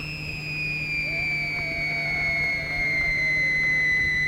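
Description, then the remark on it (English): A whistling firework, a Sneaky Pete or Whistling Pete, shrieks with a steady, piercing high tone that holds the whole time and sags slightly in pitch, loud and continuous over a low background hum. “An instant replay of another Sneaky Pete or Whistling Pete.”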